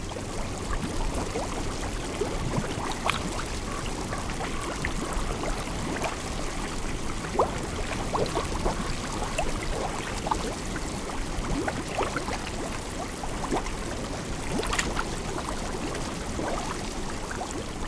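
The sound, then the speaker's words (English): A small hot spring in Yellowstone bubbles and gurgles steadily, percolating into the flowing Yellowstone River, with scattered pops and trickles over a constant rushing wash; recorded by Jeff Rice. “This small hot spring percolates right into the Yellowstone River.”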